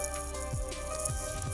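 Steady fizzing and crackling of sparkling water, like bubbles popping just after a pour, moderately quiet with a faint low hum beneath and no talking.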